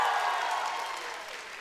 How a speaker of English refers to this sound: Either way, the race is over, and it was fantastic. The crowd erupted once again.